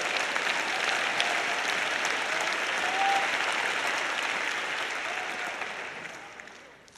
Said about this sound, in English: Oh, everybody needs to clap their hands today.